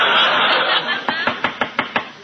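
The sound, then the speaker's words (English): A steady run of about six sharp knocks on a door, evenly spaced and fairly loud, following a second of broad hissing noise with no one talking. “Well, what are you knocking again for?”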